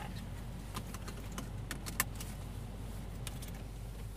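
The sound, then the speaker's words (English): Inside a car driving around a neighborhood in Lakeville, Minnesota, in the dead of winter at the end of December, the car reading 10 degrees: a steady low engine and road rumble fills the cabin, with scattered light metallic jingles like keys clinking against each other. No one speaks. “as he drove me around his neighborhood in the dead of winter at the end of December.”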